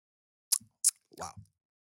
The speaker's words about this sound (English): Give it a sip. We all got a sip and then we'll give the notes.